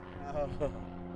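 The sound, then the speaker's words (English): A small single-propeller plane taking off to the south, its engine droning steadily, a buzzing harmonic hum lasting about a second, with brief murmured voices over it. “It's another little prop plane. Single propeller plane.”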